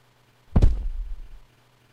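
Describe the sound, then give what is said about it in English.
A single heavy thump strikes a front door, a deep impact that rings and rumbles briefly before fading into quiet. No voices are present. “There was a huge thump at the front door, and it woke her up.”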